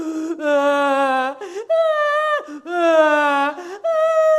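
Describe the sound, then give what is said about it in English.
A voice imitates a small child crying, drawn-out whimpering wails that rise and fall in pitch across several sustained breaths, fairly loud with no words. “Means I continued to cry.”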